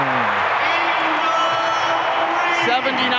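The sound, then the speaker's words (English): A large arena crowd at a Utah Jazz basketball game roars and cheers steadily for about three seconds after a corner three-pointer by Ingles, a loud, dense wash of voices with scattered whoops rising above it. “Crowd wants this one.”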